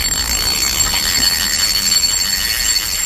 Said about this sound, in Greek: Ο αισθητήρας της φωτιάς. Ο αισθητήρας της φωτιάς. Πήρε ανίχνευση. Ναι.